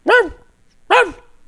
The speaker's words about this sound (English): He brought his little yappy dog. He brought his little yappy dog with him.